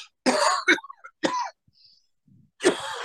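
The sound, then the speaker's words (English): A person coughs and clears their throat several times in short, close bursts separated by brief pauses, fairly loud and with no talking. “And sorry guys, I got a cough on.”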